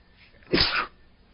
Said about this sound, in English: Hold on, I got to sneeze.